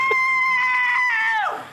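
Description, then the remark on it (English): A single loud, sustained film scream sound effect holds a steady high pitch for over a second, then wavers and drops off as it fades, with no talking around it. “And there's the scream again. Get used to it. There'll be lots of that scream.”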